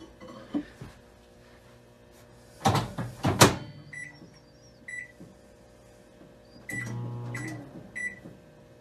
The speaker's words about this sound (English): Yeah. And then he cooks it in the microwave.